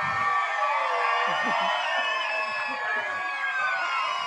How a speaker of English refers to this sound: So stand up to your feet and yell for me. I want you to stand up and yell for these t-shirts. Oh, yell, yell.